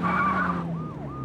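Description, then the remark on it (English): A police car siren sweeps up and down in quick wails over a loud, roaring car engine and tire noise, intense, with no talking. “Who the hell follows a siren and games on the police?”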